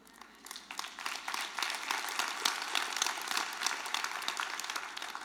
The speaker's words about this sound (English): You're clapping now until you got to go back to work.